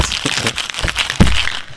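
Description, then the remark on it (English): A metal cocktail shaker tin rattles in quick, rhythmic bursts in a longer shake than normal, then pops open with one sharp, loud crack, with no talking. “That was a longer shake than normal.”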